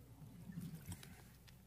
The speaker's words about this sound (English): Just think about it in your mind while I take a drink of lovely water.